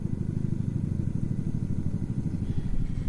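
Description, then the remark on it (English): A helicopter flying over a home on the Potomac River in Virginia gives a low, steady rotor throb that pulses continuously for a few seconds, a deep rumbling chop with no voices over it. “You hear the helicopter, Mr. Producer? Do you or don't you?”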